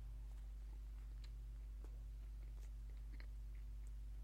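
Someone chews a mouthful of burger close to the mic: soft, irregular bites and squishy crunches scattered over a few seconds, faint against a steady low hum, with no talking.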